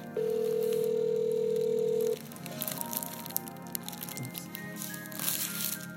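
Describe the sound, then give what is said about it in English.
A steady, mid-pitched telephone dial tone hums for about two seconds over a speakerphone as a hotel front desk is called, then cuts off, followed by soft clicks, rustling and faint crackling as the call goes through. “Speakerphone on. Front desk a clicking.”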